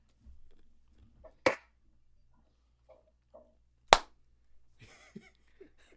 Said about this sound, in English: There was a single clap. I know. What was it? The one clap.